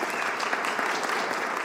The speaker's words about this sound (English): How many of you would say you're home alone? Great, clap for that.